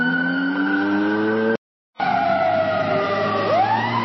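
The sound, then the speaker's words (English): Sirens wail over a steady humming engine as a vehicle approaches and passes, the pitch sliding as it goes by, with a brief silent break partway through. “Sirens and a humming engine approach and pass.”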